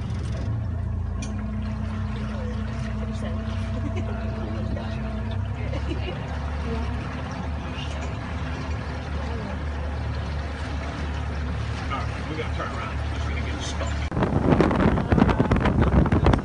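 A motorboat engine drones steadily as the boat travels at very high speed across open water on a bayou, under constant roaring wind buffeting the microphone, with a louder rush of wind and splashing spray surging near the end.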